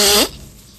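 A single short, loud nose blow, a brassy, honking burst with a rising pitch lasting about a quarter second, then fading into quiet room noise. No one speaks.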